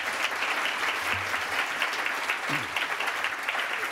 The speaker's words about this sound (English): It's a very rewarding, but it's a hard task reading and engaging with many books. So please do give a round of applause to the judges. They did a great job.